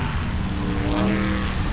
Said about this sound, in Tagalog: Daming sasakyan. Pero kaya ko to.